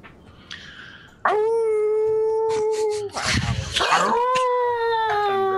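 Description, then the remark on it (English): A person imitates a howl: a long, steady howling tone, a brief rough breathy burst, then a second sustained howl that trails off. “howls back”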